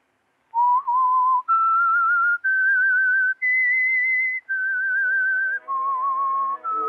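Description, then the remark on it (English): The whistled theme melody of the radio show The Whistler: long, sustained notes with a slight wavering vibrato, stepping upward then descending, clear and loud on its own, with faint accompanying tones entering toward the end. “And now, back to the Whistler.”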